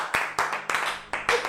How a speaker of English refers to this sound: Are you not clapping for the Holy Ghost?